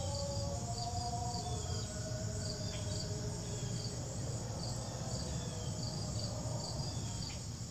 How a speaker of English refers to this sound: Yeah, so that cacophony, you could hear all the insects and tree frogs, but if you could you make out the ending of the national the American national anthem? Yeah, that's what was playing.